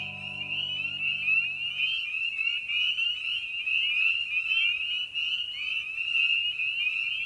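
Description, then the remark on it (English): A dense chorus of spring peeper frogs calling on a cool, clear spring night in the second week of April, temperature in the 30s, countless high, piercing peeps overlapping into a steady shrill trill. A low hum fades out after two seconds. “Night of the Peepers”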